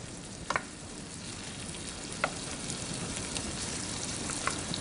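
Diced plum tomatoes fry in butter and garlic, softening for a pasta sauce base, with a steady sizzle broken by a few sharp pops and crackles scattered through. No one speaks.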